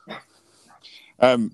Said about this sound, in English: I have. Mine's barking a bit now.